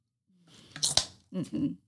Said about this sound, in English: Listen to that crunch. I'm done with that snack.